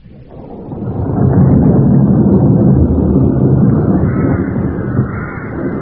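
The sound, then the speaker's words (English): A low, heavy rumble swells within the first second and holds steady and loud, like rolling thunder mixed with gusting wind, with no voices over it. “What brings you out in the storm?”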